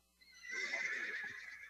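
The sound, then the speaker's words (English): A horse up on a hill whinnies once, a shrill, quavering neigh lasting over a second that rises and then trembles downward, with no voices over it. “But I hear a horse.”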